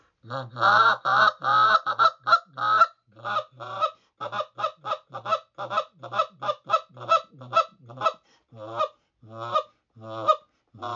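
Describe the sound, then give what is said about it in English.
A goose call blown softly, making a steady run of short, buzzy clucks with a slightly higher pitch and a low murmur, with no talking, imitating content feeding geese. “And you hear what I'm doing is I'm doing real soft. It's kind of that buzz cluck that they're doing with a little bit of a higher pitch.”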